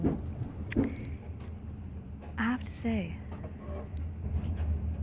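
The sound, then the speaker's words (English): A steady low rumble of a moving train heard from inside the carriage at about six in the morning, a continuous droning hum throughout, with a person speaking briefly over it. “I don't know if you can hear, if I've managed to capture the sounds of the train in the background so well, but I spent the night being woken up by a variety of things.”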